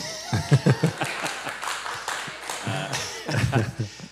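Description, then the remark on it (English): An audience claps, a steady patter of many hands running through the whole stretch, with a few brief voices or cheers rising over it near the start and again toward the end. “You can clap.”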